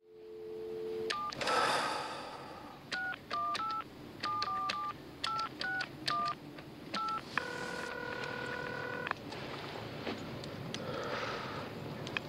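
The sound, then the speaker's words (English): Touch-tone keypad beeps as Will Graham dials a phone number to call Lecter, a quick series of about a dozen crisp tones in uneven bursts, followed by a longer steady tone and quiet hiss. “Graham calls Lecter and speaks to him over the phone”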